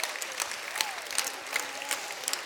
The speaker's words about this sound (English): And I would say that clapping is also for a big thank you for all those people who did all that.